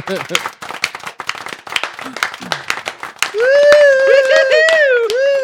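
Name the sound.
smattering of applause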